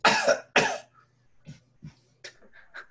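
A couple of short, breathy coughs, followed by a few quieter, feeble cough-like rasps and a little throat noise, all with no talking.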